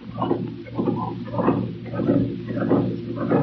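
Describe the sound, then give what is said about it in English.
A mechanical pump sucking the air out of an airtight, sealed room with no doors or windows, drawing air in a steady, rhythmic cycle, with a constant low hum beneath repeated whooshing pulses about twice per second, moderately loud, with no voices. “Pumping, pumping, pumping.”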